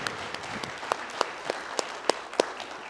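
An audience claps together for the Lord at the close of a prayer in a church service, with a dense wash of applause and sharper, louder claps landing in a steady rhythm about three times a second. No one speaks over it.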